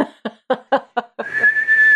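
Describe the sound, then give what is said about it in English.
Five quick, evenly spaced bursts lead into a long, steady high-pitched whistle that holds and rises slightly in pitch, fairly loud, like a celebratory whistle. “I feel like I should redo that whistle because it sounded very low energy.”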